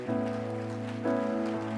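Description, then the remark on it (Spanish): An audience claps for God during a worship service, a dense, continuous patter of many hands over sustained, droning keyboard tones, rising slightly in intensity partway through. “Aplaude para Dios en esta hora.”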